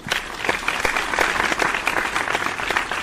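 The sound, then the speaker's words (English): Steady applause from a group of people fills the whole stretch, a dense, continuous patter of many hands clapping with no pauses. “Clap it up for yourself.”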